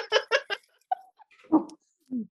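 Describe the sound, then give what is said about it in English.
Dogs barking excitedly: three quick sharp barks in a row, a brief high whine, then two more scattered barks, with no one talking. “Dogs are going crazy.”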